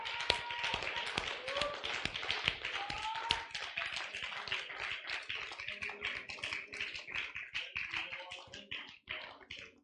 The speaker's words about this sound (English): Hallelujah. Hallelujah. Thank you, Jesus. Yes, Lord. Give the Lord a hand clap of praise, everybody.